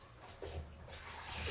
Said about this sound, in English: I'm just like sitting here and just relaxing. Taking my towel, pouring water down my back.